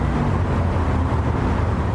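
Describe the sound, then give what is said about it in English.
A bus on a city architecture tour drives through traffic, its engine producing a steady, low rumble with a constant hum and no pauses or voices. “Now, if you'll excuse me, I'm actually on a bus tour right now.”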